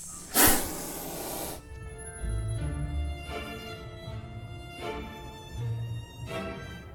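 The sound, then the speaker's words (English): A couple of snakes hissing: one loud, sharp hiss, then softer hisses returning every second or so over a low, steady humming drone, with no voices. “Right behind you, dude, there's a couple of snakes.”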